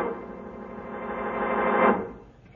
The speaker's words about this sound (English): Because I wanted you to listen to that signal. If I'm not mistaken, it's a call for help.